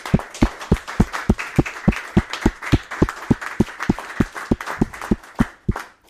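Steady, evenly paced clapping from a meeting audience giving a round of applause to thank two departing volunteers, roughly four claps a second, fairly loud for about six seconds, with no voices over it.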